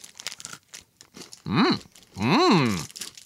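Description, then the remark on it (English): Crisp crunching as a Hraun chocolate bar with big pieces of puffed rice is chewed, a scatter of short dry bursts, followed by two drawn-out hummed vocal sounds that rise and fall in pitch. “Yeah, this is like a crunch bar with big pieces of puffed rice or puffed something in it.”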